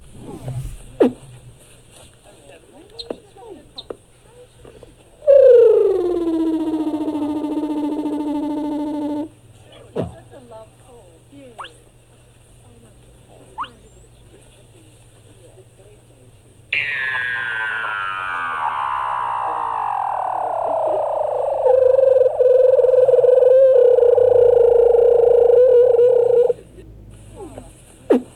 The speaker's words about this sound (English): Here are some sounds made by a sleeping Weddell seal on the ice in Antarctica, recorded by photographer John Bozanoff.